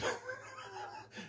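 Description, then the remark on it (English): A dog yelps sharply after being stung by a bee, then keeps whining in a high, wavering tone for about a second, with a brief final cry. It sounds fairly quiet, with no one talking. “My dog got stuck by a bee.”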